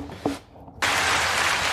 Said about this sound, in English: That welcome. Was a quick applause. That needed to be dragged out.